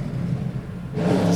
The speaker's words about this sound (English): Hold on. It's a motorcycle driving by.